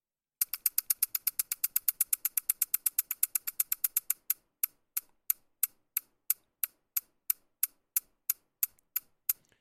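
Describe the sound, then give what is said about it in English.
A camera set to RAW-only at 8 frames per second fires its shutter in a rapid burst of sharp clicks, then slows to a steady, slower series of crisp snaps, about two per second, as the shutter is held down, with no talking. “So you can just keep holding the shutter and your burst mode will be a little bit slower, but you'll still be getting your burst.”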